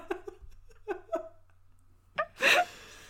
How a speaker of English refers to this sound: Oh, God. As I yawn...